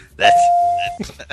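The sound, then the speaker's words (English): A single steady phone-line beep, a clean mid-pitched tone held for under a second, sounds over soft voices, with people talking again right after it; the beep recurs every 8 seconds on the line. “You hear that beep every 8 seconds, don't you?”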